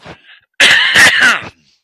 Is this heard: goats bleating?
no